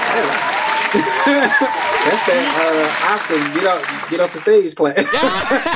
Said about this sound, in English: He said, that's not even just your regular clap. That's your get off the stage clap.